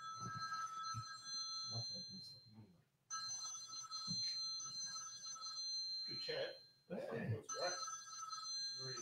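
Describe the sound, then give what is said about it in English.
A shrill, alarm-like phone ringtone blares in steady bursts, cutting out briefly twice before starting again, loud, with muffled voices and movement underneath. “Imagine having that as your ringtone.”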